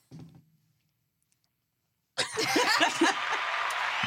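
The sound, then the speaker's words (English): After a brief low murmur and a couple of seconds of silence, a loud, dense burst of clapping erupts and keeps going steadily to the end, bright. “It's a clap.”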